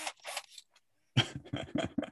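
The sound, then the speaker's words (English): A power drill revs in short bursts: a pair of buzzy whirs, a pause, then four or five quick, loud pulses in a stuttering rhythm with a rough, mid-pitched mechanical tone. “I'll give you a little bit of power drill here on the way out.”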